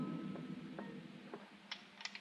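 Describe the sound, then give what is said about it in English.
A handgun is drawn and cocked at the door of the lit office of the Brawley Shipping Company: a soft scrape followed by a few crisp, quiet metallic clicks, the last two sharper and close together, with no talking. “I knocked on the door, drew my gun, then I stepped back and waited.”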